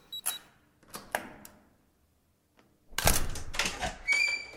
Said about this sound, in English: It has a key code on the door. Oh, please. Door open.